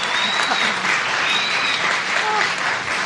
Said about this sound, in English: And let's get a round of applause. Round of applause for Maureen Johnson.